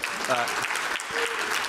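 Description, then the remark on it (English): A steady wash of audience clapping fills the short stretch, dense and even in loudness, with a few voices briefly calling out over it. “Hold your applause.”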